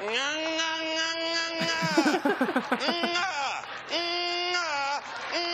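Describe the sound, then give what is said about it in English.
Comedian Dave Attell imitates a San Francisco garbage truck in the morning with loud, sustained nasal whining tones, broken midway by a rapid, fluttering wobble, then returning to long droning whines with a few dips in pitch. “The loudest thing are the garbage trucks. Do you hear them in the morning with that sound?”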